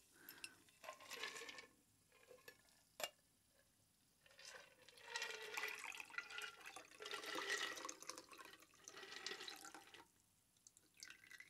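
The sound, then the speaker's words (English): A margarita-style drink of tequila and triple sec pours into a glass in a few uneven bursts, with a sharp clink near the start and a steady splashing stream in the middle before it trails off. Fairly clear, no talking. “And let's see if I learned anything from the last time that I poured this.”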